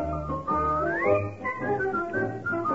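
A bright whistled tune rides over a fuller instrumental backing, with one note sliding smoothly upward partway through; steady and moderately loud, with no voices.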